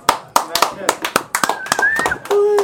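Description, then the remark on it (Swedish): Scattered applause from a small group welcoming a legendary hip-hop group as guests: sharp, uneven hand claps in a loose rhythm, fairly loud, with a faint voice or tone lingering underneath toward the end. “Och en applåd framförallt.”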